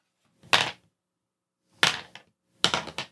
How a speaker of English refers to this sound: So just roll me 3d10 real quick. Roll you 3d10. You got it.